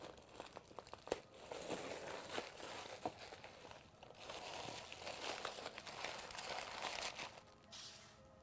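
Tissue paper crinkles and rustles steadily as it's unwrapped to reveal the contents inside, with a few sharper crackles and crunches scattered through, then the sound thins out near the end. No voices.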